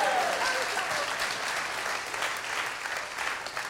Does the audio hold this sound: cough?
no